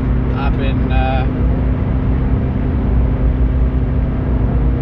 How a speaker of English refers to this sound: There we go. Porsche's putting foot. So is the Audi.